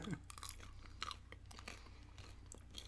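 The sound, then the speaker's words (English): Quiet crunching as Queen Bee Fizzing Whizbees, a chocolatey fizzy fruit candy like Pop Rocks, are chewed, with irregular crackly bites and mouth noises over about three seconds, no talking. “So there's a little bit of a crunch in there.”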